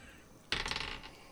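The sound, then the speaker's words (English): Dice clatter across a hard table, a sudden bright rattle of quick tumbling clicks that lasts about half a second and fades out. The sound is clear with no talking. “I should have got my dice out.”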